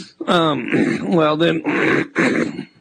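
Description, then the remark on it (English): A deliberate, exaggerated cough, loud, practised as a trademark cough: drawn-out voiced grunting hacks followed by a few harsher, breathy coughing bursts, with no talking. “I'm working on this trademark cough. What do you think? It's getting better, too.”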